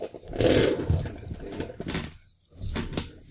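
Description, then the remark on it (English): Dice clatter and tumble in several short rattling bursts, with a brief quiet pause before a final roll of clicking knocks. “I get 3 more die.”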